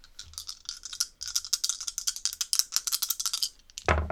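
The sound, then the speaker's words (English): Dice for a tabletop roleplaying game rattle in rapid, dense clicks for a few seconds, like being shaken, then end with a louder, fuller clatter as they tumble onto a surface, landing on a 5 and a 6. No voices are heard. “I rolled a 5 and a 6 again, because I do that every single time, but this time it's bad.”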